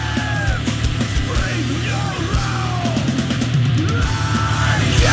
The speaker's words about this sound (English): This part's cool. Like, yeah, it's cool enough. You got to judge it on a curve because of the production. I mean, we always say that. I like this dude screaming, too.